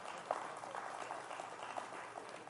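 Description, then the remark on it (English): Five people clap in a loose, uneven patter, fairly quiet and steady for a couple of seconds, with no voices over it. “That's five people clapping.”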